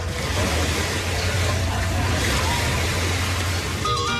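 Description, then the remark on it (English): A steady, unbroken roar of ocean surf on a beach in Jamaica, recorded on a phone while walking along the beach: a broad hissing wash with a low rumbling undertone and faint indistinct voices mixed into the background. “walking down the beach in Jamaica and just recording background sounds, everything from the ocean to bar sounds to bands playing on bars”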